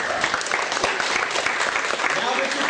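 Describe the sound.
An audience applauds with dense, steady hand clapping that stays loud and even for the whole stretch, with a few voices faintly mixed into the clatter.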